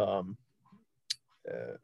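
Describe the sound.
A single sharp computer mouse click, made while clicking on player Lamar Stevens's name, lands in a brief pause, with a person talking just before and after it.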